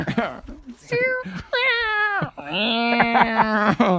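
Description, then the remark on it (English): A person vocalizes a silly segue sound effect: a few strained, pitch-bending wails that come out like a yowling cat, loud, running continuously for several seconds. “Or if we had sweet editing skills, we would just make, we'd be like, segue, and we'd go, vroom, vroom, vroom. That's what my segue sounds like. A cat. A cat stuck in a jar.”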